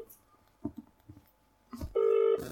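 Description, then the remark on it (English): Soft handling taps and clicks on a phone, then a loud, steady electronic phone tone sounds for under half a second near the end as a call is dialed. Nobody speaks. “Who are you ringing?”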